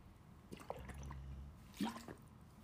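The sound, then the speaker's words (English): Liquid sounds of water being poured or sipped: a few gurgling, slurping bursts with rising watery tones, the strongest near the end, over a low steady hum. “Let's do it together. It's water.”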